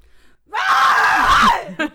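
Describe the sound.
A person, standing away from the microphone, lets out a loud, raspy, feral scream reenacting a character's scream, a single sustained shriek lasting about a second, followed by a short breathy catch at the end.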